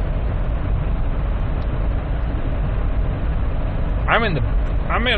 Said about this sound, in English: I'm on a highway. It's dark as fuck and there are two guys just driving side by side, one just to fucking bump cocks together. And there's two cars behind me. There's a guy beside me.